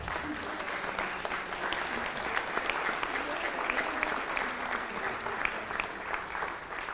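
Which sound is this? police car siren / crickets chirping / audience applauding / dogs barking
audience applauding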